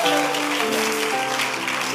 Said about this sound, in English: But you see, at the time that, come on, give the Lord a clap of praise.